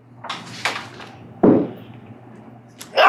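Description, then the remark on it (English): A loud sneeze bursts out, with a few sharp, breathy bursts building up before the final explosive blast at the end. No talking. “Bless you. Excuse me. That was loud as my fault.”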